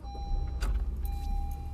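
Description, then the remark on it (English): A car engine idles with a low steady rumble, with a brief clunk or rattle partway through as a man moves the car out of its parking spot. “Is this guy moving his car?”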